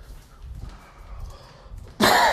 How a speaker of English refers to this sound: damn it, we almost made it a full episode without me coughing.